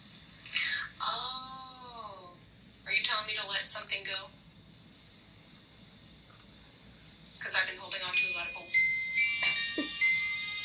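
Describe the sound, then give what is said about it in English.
A battery-powered toy with new batteries, sitting untouched in a corner, switches on and off, giving out short bursts of electronic, voice-like tones with steady beeping pitches, falling silent for several seconds in between, against a faint background hum. “It got new batteries, so there's no reason for it to be turning on and off like that and doing like different things like that.”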